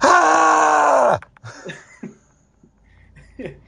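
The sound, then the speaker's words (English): A man lets out a loud, drawn-out scream into a microphone for just over a second, his voice dropping off abruptly, followed by a few quieter breathy grunts and murmurs. “I'm just gonna like scream like Sam Kinison for the next 5 minutes.”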